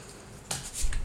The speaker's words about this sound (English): So I'm gonna shuffle and cut the deck.